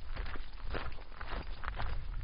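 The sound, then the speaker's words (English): Footsteps crunching steadily on a gravel ADA trail at a nature preserve, a regular walking rhythm of soft, gritty crunches with a low rumble underneath and no talking. “If there's anything that we're looking at while we walk, everybody's going to get to hear my crunches on on this very nice trail here.”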